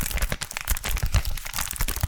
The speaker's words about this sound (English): Have you ever heard nylon rubbing together? It's really loud.